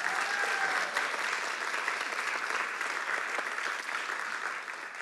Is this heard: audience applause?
yes